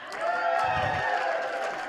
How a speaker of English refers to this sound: So you can cheer in the room today because you're all the good people.